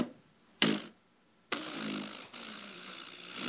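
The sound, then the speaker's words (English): A comic fart sound effect from a fart machine: a short, sharp blat, a brief pause, then a long, raspy, sputtering one that wavers in the middle before trailing on. Loud, with no talking. “I'm hanging up my fart machine”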